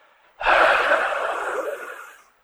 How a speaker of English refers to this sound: That's not a ghost. That's just your wheezy friend.